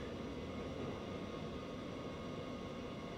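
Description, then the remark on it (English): A steady, loud rumble of a train rolling along the rails, a dense low roar with a hissing wash on top and no break or change throughout. “Get off this train.”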